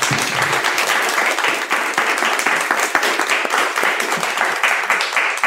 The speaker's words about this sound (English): Thank you guys so much for sharing your insights. Please join me in giving a warm round of applause to our awesome panelists.